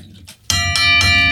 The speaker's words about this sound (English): Oh yeah, let's move on. Ring the bell, please.